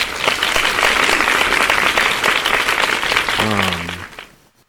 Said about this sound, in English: Congrats. You know, like hand claps.